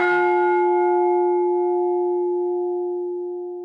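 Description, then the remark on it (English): A single bright bell ding rings out once, its clear metallic tone sustaining and slowly fading away over several seconds with no voices present. “We need a bell for whenever we find connection so we can just go.”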